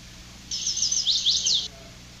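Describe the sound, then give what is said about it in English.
A single bird song phrase of rapid, high-pitched chirps and trills, lasting about a second, heard clearly over a quiet outdoor background hum with no talking, recorded at night in Maine. “I recorded this bird last night.”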